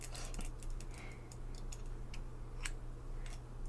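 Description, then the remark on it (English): Brand-new scissors snip while cutting a person's hair, in a series of crisp, quiet metallic clicks at an uneven pace, over a low steady hum. “Using these scissors to cut your hair, okay?”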